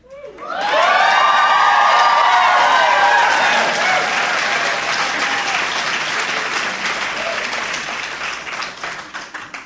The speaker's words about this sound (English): I assure you that fanfare was not for thee.